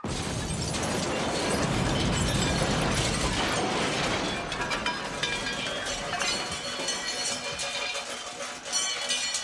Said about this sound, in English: They blew up my car! They blew up my car! They blew up my car!